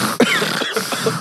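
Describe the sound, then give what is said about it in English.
A person vocally imitates a pug's snoring breathing: a quick run of rough, raspy snorts and wheezes, loud and breathy, repeating several times in about a second with no words. “Bad because they get breathing problems and they start going.”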